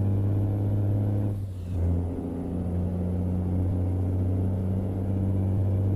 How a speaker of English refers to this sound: Oh yeah, we're getting this goddamn truck fast. I guess this engine is definitely not too slow. I think it's handling it perfect. Absolutely perfect.